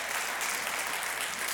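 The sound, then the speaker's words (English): A church audience claps hands for the Lord during a sermon, in steady, dense applause, a continuous bright wash of many overlapping claps at an even loudness throughout, with no voices standing out. “Can you give the Lord a shout and a hand clap?”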